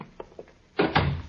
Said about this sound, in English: Close the door